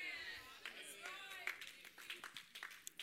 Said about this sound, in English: That's okay, play patty cake with God. Your hand claps just told on you. Your hand claps just told on you.